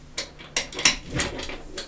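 Someone fiddles with a chair, producing a handful of sharp mechanical clicks and knocks at irregular intervals, with faint rattling between them and no talking.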